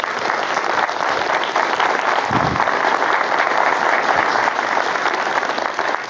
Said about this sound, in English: Will you give yourselves a round of applause?